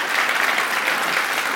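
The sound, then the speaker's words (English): Steady audience applause at a morning worship service, a dense, even wash of many hands clapping at constant loudness throughout, with no voices breaking through. “Well, I hated to cut off that applause there. You can continue to clap”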